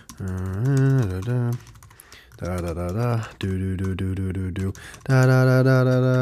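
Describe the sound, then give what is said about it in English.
Quick, sharp clicks on a computer keyboard rattle through bursts of loud, sustained vocal sounds as someone types in a password while noisily vocalizing, with short pauses between the bursts. “When you try to like not be quiet while typing in a password, like I don't know how people type in a password while doing other things.”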